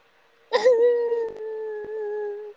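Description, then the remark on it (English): A person fakes crying with one long, whimpering wail that starts abruptly and holds a steady, slightly sinking tone for about two seconds, fairly loud. “Let me cry. I'll cry a river for you.”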